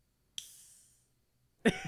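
A can of mango-scented sparkling water cracks open with a sharp hiss that fades out over about half a second, followed after a short pause by another louder, rougher burst of noise.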